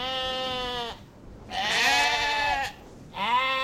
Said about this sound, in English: More than 3,000 sheep graze on Ian Anderson's farm.